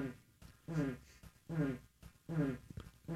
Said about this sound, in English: I farted today. That made me so much happier. The mic so picked it up, too. That gas did not need to be inside of me. It needed to come out. It was an exorcism of fart.